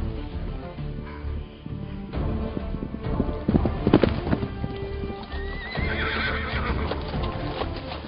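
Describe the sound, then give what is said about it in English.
Rapid, steady hoofbeats of a roan gelding clatter at a gallop for several seconds as it is ridden off toward the North Range, loud, with a horse's whinny rising near the end. No voices. “She galloped off toward the North Range, still 2 miles distant.”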